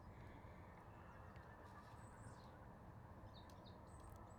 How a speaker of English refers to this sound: I'm sure that's my blackbird singing this morning.